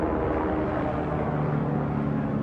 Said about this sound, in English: And I got a plane going over my head, messing with my head. Let's let it pass by.